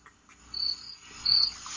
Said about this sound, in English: This guy broke out the crickets. That's what the fuck I think of Vargas versus Pacquiao, man. What? You hear that? It's crickets, dude. I hear them. Fucking crickets, man. Okay. Crickets.